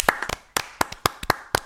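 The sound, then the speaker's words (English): A few hands clapping in a loose, uneven rhythm, about eight or nine sharp claps over under two seconds, some doubled, fairly loud with no voices. “Clap very much. I clap.”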